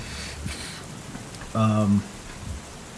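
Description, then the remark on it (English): A steady wash of crackling static hiss, heard instead of words, runs throughout, fairly quiet, broken briefly by a short, louder voice-like hum partway through before the static carries on alone. “These zealous monsters have trapped, and then you hear static.”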